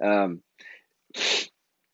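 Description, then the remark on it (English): A single loud sneeze: a voiced, drawn-in buildup followed by a brief pause and then a sharp, explosive, breathy burst, with nothing else around it. “And so yeah, so maybe if I can just cap this off before I sneeze.”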